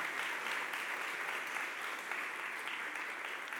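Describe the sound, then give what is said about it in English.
A crowd applauds people who have just shared, steadily, a dense, even wash of clapping that holds at a constant moderate level for the whole few seconds without fading. “Maybe give them a round of applause.”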